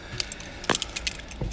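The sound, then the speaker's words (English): A bunch of keys jangles in a few quick, bright metallic shakes, with one louder clink near the middle and no talking. “Where's my keys?”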